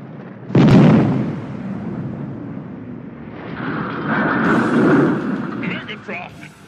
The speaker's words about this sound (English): As the Autobots are en route, an explosion opens up one side of the ship, and in comes the Decepticons blasting.